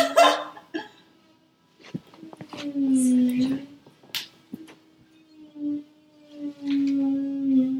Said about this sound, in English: Somebody is like right under us with some kind of power like tool a or something. Power drill, yeah. Okay, good. They're stopping.